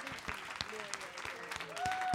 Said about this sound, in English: Round of applause to who made it through all 60 minutes.